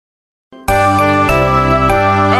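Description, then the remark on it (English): After a short silence, loud bells ring out in a bright, sustained wash of tones, with fresh strikes landing about every half second over the lingering ring. “Ring! Info bells!”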